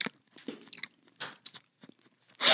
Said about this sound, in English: What if you change the door opener noise to every time you open the door? It's like me chewing.